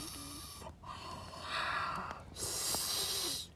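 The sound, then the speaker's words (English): Loud, heavy breaths pushed right up against a microphone, rasping and wide-band, coming in two long surges with a brief gap between them and no talking. “Just needless breathing. Excessive breathing.”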